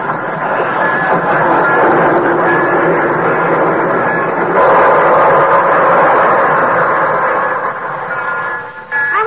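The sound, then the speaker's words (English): The Torontoan train pulls into a station on track 6 with a steady, loud mechanical roar and faint whining tones, ending in a brief high brake squeal as the noise eases. “Brantford, Canada, where the Torontoan is just pulling in from, on track 6.”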